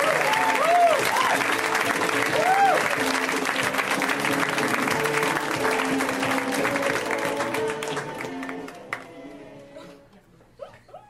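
An audience breaks into loud, steady applause for a comedian, with whoops and rising whistles near the start, then the clapping thins and fades out over the last couple of seconds.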